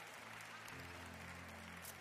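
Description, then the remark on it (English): A crowd claps steadily in a dense wash of applause for the piano player, with a low sustained hum of piano or organ tones underneath that shifts pitch partway through. “Y'all give it up for the piano man.”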